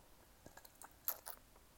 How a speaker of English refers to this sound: Forever, as I sip my lemonade, forever and always talking.